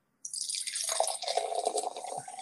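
Water is poured steadily into a glass, a continuous splashing, gurgling stream that starts abruptly and runs close and fairly loud until the end, with no voices.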